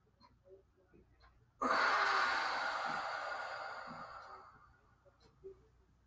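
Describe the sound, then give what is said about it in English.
One long, slow, airy breath rises suddenly out of quiet and fades gradually over about three seconds, part of a guided breathing session starting with four-second inhales. No one speaks. “So we're going to go right into the breathing session for today's podcast, starting with 4 seconds in.”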